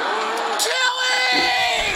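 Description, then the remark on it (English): A man in the crowd at a football game lets out a long, loud, strained yell at kickoff, with a rising and falling pitch, carried over the steady roar of the stadium crowd. “We're at a football game. It's kickoff, and this guy behind us.”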